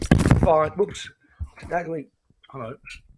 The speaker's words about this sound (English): We're here. I just knocked my mic. Hold on. Resetting.